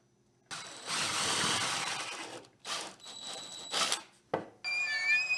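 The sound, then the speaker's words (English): A power drill whirs loudly through wood in several bursts, boring with a drilling jig made of wood, its motor revving up and cutting off between bores, with no one talking. “This is a drilling jig made of wood and no welding.”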